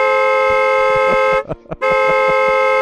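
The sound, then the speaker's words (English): A loud car horn blares in a long sustained honk, cuts off briefly, then sounds again in a second long blast, with faint traffic noise underneath. “And the kids were like, what's that guy beeping for?”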